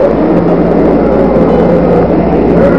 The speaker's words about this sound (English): At 30 stories high and weighing 6 million pounds, the rocket rose into the air amid an explosion of flames. Slowly at first, and then faster, and faster.